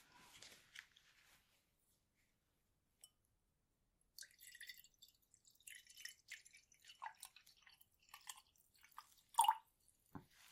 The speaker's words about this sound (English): So I'm just going to pour you a little bit of water.